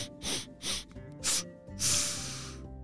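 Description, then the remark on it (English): A voice imitates sniffing the air, as two story characters raise their noses to sniff for a trail: three quick sniffs followed by one longer, drawn-out inhale through the nose, with a soft steady hum in the background. “They both raised their noses up to the air and started to sniff.”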